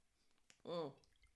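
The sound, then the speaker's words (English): A single short, wet sip of bottled water, a brief slurping gulp lasting under half a second against a quiet background. “See, I'm drinking bottled water because.”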